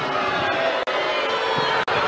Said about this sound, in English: when he made this recommendation, they booed him, and they booed him loudly.